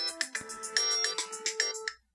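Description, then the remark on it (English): A phone ringtone plays a bright, repeating electronic melody of short tonal notes in a quick steady rhythm for about two seconds, fairly loud with no talking, then stops abruptly. “Saved by the bell.”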